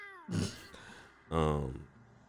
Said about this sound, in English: I heard that one. That cat is loud.